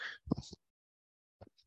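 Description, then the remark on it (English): A single sneeze from a person who is cold: a breathy hiss building into a sharp burst, then a second of silence and a couple of faint, brief sounds afterward. “Sorry, I had to sneeze because I'm cold.”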